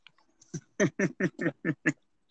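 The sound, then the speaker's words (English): A large dog, a 185-pound Great Dane mixed with a Rottweiler named Bull, grunts and snorts: about seven short, rough, nasal bursts in a quick, steady rhythm, fairly loud, with no one talking. “Yeah, that sounds like the goat of a dog, too.”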